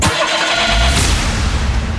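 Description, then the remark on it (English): An old truck engine cranks and catches, then settles into a loud, steady rumbling run, with a deep low throb and no voices. “And it runs. Doesn't go too fast. But it'll drive. It'll go. A gas guzzler.”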